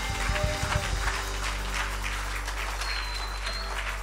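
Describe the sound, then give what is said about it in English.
An audience claps together in a steady burst of applause as a hand clap of praise, dense and even throughout, with a few brief tonal hums and a faint high whistle drifting through the noise. “One more hand clap of praise tonight.”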